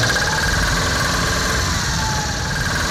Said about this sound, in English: He's now spinning at the rate of an average 4-cylinder car engine would sound if it were moving at 65 miles an hour and one of its rods were thrown.